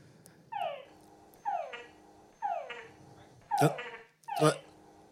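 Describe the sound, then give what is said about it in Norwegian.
A frog calls five times at a steady pace, each croak a harmonic, downward-sliding note; the last two carry sharp clicking bursts. No voices are heard. “Ja, så det legger på denne kvekkingen.”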